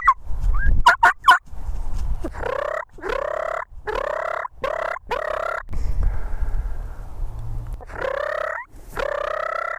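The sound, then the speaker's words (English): A wild turkey, a male out with a hen in the morning, gobbles over and over, a string of loud, rattling, mid-pitched gobbles with short pauses between them. A few sharp clicks come early on, and no one speaks. “Look, he's back out with that hen right there.”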